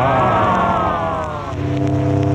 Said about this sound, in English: As our boat steams into the beautiful harbor, we already sense the magic of these enchanting isles under a glamorous tropical moon.